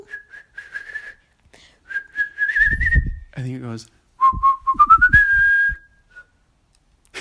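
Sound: person whistling a tune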